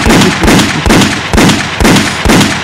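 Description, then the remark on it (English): Loud gunshot sound effects fire in a steady, rapid rhythm, about six sharp blasts roughly half a second apart, each with a booming echo and no voices. “Where the gunshots at?”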